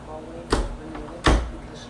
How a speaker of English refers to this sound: Now that is the squeakiest door in the nation.